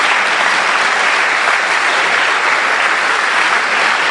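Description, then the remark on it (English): An audience applauds steadily, a dense, even wash of many hands clapping at once that stays loud and unbroken for about four seconds with no voices standing out. “Oh, your clapping is, I don't know.”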